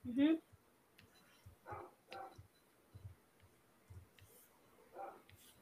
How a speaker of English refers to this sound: Somebody got a dog barking in the background. Yeah, I hear. Is that us? Not me. It might be the French dog.